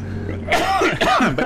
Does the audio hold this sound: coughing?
yes